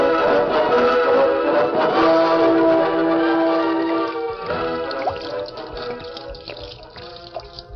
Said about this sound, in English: You pour oil in river? That's right. We're going to pour all 60 barrels of it into the river.